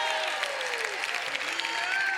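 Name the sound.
audience clapping and shouting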